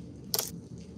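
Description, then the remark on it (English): A small painted miniature figure drops onto a table, making one brief, sharp clack with a bright, rattly edge that fades quickly over a low background hum. “You drop your dice, we drop your mini, it's just a pattern.”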